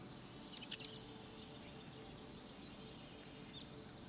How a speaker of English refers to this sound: The doe still walking in front of you, leading the way on this path, meandering through the tall trees, hearing the birds and the trickling of a stream, the sounds of the forest.